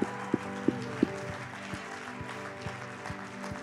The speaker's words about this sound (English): Yeah, let's give him a hand clap. It's all about Jesus.